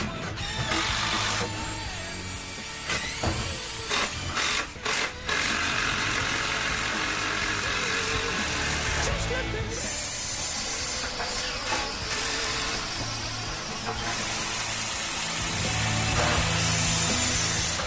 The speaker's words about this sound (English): listen to this clip very carefully. It's from our playlist, but Matt has got power tools all over it.